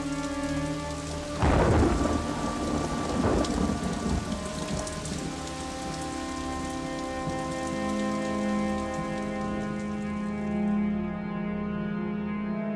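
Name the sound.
rain falling with thunder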